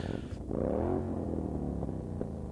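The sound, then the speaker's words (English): A motorcycle engine roars outside, its throaty rumble climbing in pitch as it revs past, then settling into a steady droning growl. No one speaks. “And some dingus out there is on the loudest motorcycle ever.”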